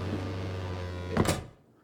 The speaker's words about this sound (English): Subtle, Captain. The door? Hello, Captain?